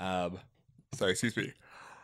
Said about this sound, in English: Oh, excuse me. Sorry, I had to yawn. Pardon you.